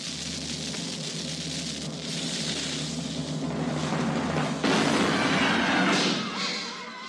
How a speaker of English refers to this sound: Okay, here we go. Fire the cannon.